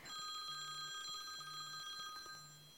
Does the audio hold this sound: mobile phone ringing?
yes